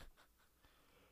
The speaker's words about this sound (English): That's rude of me to yawn like that. Am I boring you?